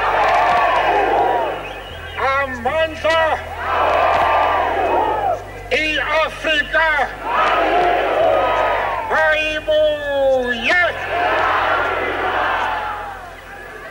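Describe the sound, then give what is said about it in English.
A huge crowd of thousands of people at City Hall in South Africa roars and cheers continuously as Mandela addresses them, while voices rise in loud, rhythmic call-and-response chants, repeated bursts of shouting carried over the dense wash of the crowd. “Mandela was taken by car through crowded streets to City Hall, where he addressed thousands of cheering people”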